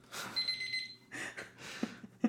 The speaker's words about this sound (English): Let me start a timer.